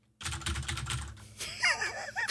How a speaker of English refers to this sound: Dude, you're making fun of me with the keyboard and the mouse. Have you heard you typing on the podcast yet? Because you clicky clack louder than anything I've ever heard. I have a loud keyboard. Yes, you do.